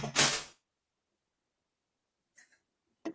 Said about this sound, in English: Breaking everything? Yeah, my wife just broke a glass.